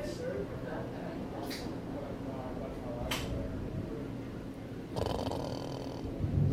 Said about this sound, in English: Oh, was that me snoring? Sorry.